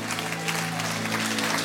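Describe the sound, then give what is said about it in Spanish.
A church audience claps for the Lord after a sermon, a dense, even wash of many hands that holds at full strength throughout, with a low sustained tone humming beneath the applause. “Dale un aplauso fuerte al Señor por su palabra.”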